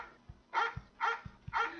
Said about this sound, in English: Oh, there's a dog one. Play the dog one.